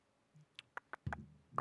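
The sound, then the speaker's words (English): A handful of quiet, irregular clicks from someone typing on a computer keyboard, with a few sharp key taps spaced unevenly and a soft low thud mixed in near the end. “He's just typing.”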